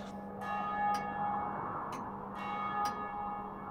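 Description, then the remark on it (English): The bells of a church chime in a steady, resonant sequence, striking the four quarters, with sustained ringing tones overlapping and periodic strikes about once a second, moderately loud with no voices. “The bells! They're chiming from 6 to 7, and from 7 to 8.”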